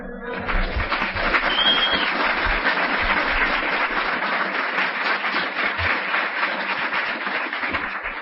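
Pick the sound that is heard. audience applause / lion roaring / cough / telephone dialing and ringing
audience applause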